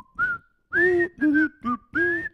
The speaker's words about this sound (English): Something we liked about the Andy Griffith Show. I'm going to go with that whistling tune. Yeah. It's so iconic.